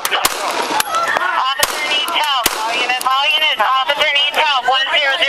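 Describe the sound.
Several sharp, loud pistol gunshots crack out at irregular intervals, cutting through continuous frantic shouting and yelling voices throughout.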